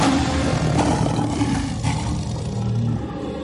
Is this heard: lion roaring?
yes